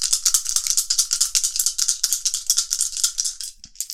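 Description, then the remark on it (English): Four transparent pink fate dice are rolled, rattling and clattering in a fast, dense stream of bright clicks for several seconds, ending with a couple of separate clacks as they settle, showing three pluses and one minus. No one speaks. “So, I'm going to roll my fate dice.”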